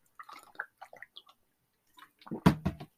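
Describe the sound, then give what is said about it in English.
Someone drinks water without ice: a few soft, uneven sips and slurps, a short pause, then a louder gulping swallow and a final wet gasp. “Oh, this water would be so much better if I would have put ice in it before I came down.”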